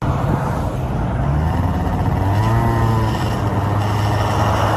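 A car drives past on a road, its loud engine rumble and tire noise holding steady with a shifting engine tone, and no voices.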